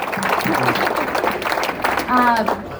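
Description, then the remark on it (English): An audience breaks into steady, dense applause lasting a few seconds, with scattered voices calling out and cheering over the clapping. “So I think we should all give him a round of applause.”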